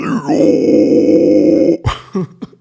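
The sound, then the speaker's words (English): A harsh, raspy inhaled vocal growl, the inhale growl technique performed as an outro, held steadily for about a second and a half, loud and gritty, ending in a few short choppy grunts. “This time doing an inhale growl”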